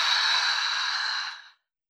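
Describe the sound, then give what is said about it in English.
A long, audible exhale pushed out through the mouth after breathing in through the nose during a meditation breathing exercise, a breathy airy whoosh lasting about a second and a half, fairly soft, fading to silence at the end. “Last time, in through your nose and let it all go through your mouth.”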